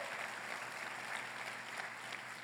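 An audience applauds for Jesus in a steady, dense wash of clapping that holds at an even level for the whole stretch, with no voices standing out.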